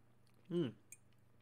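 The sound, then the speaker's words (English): A single short sip of tea and swallow, with a brief throaty, voiced gulp followed by a faint click, then quiet. No one speaks. “I'm going to have a sip of tea.”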